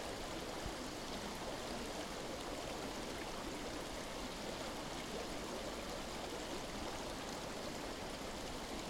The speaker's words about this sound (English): It's remarkable, isn't it? The constant flow of the water. That sound. And don't forget, it's a good 100% coming from snowmelt right now.